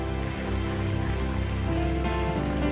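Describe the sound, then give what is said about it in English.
An audience gives the Lord a hand clap of praise, clapping in steady, dense applause for about three seconds, a continuous crackling wash at even loudness with a low sustained musical tone humming beneath it. “Let's give the Lord a hand clap of praise one more time.”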